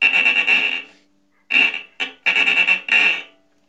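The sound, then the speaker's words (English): A harsh, buzzing scrape played in a series of bursts, a long rasp, a pause, then shorter and longer gritty strokes, bright and insect-like, imitating a cicada's drone on a chicharra, a friction instrument. “And then the chicharra, which is like the cicada,”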